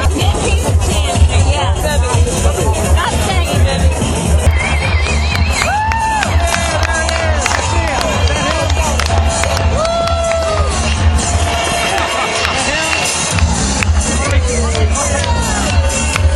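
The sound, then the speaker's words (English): A large concert crowd waiting for a singer to take the stage murmurs and chatters in a steady, dense babble, with scattered louder voices rising above a constant low rumble throughout, under a light sprinkle of rain. “As you can tell, this crowd's getting ready for … to take the stage.”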